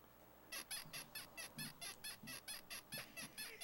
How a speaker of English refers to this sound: What was that? No idea. Is that like a rubber duck or a squeaking chair? What is that? Is that one of our sound effects? Oh, it's a bed spring. Oh, it's a bed spring.